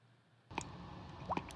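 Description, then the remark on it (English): Water bubbles and drips, with two distinct plopping drops standing out over a soft, wet gurgle after a brief quiet start. No one speaks. “During the time of the Salem witch trials, bubbles were frequently associated with a test to determine if a person was a witch.”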